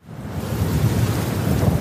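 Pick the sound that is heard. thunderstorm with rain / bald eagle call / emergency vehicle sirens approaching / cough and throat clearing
thunderstorm with rain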